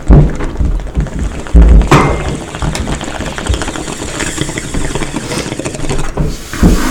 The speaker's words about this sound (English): Bro, you can't be doing dishes right now.